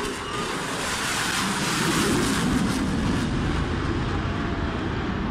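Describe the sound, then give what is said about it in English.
A military jet roars low overhead in a low, fast flyby over a river, a loud, dense, rushing engine noise that swells slightly midway and stays sustained throughout, with no voices. “Again, right on this river, here comes this airplane.”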